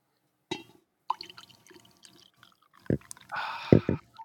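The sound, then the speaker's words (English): Morning coffee is poured into a cup: a few light clinks and taps, then a short, bright splashing pour lasting under a second, with no one talking. “Ooh, the morning pour.”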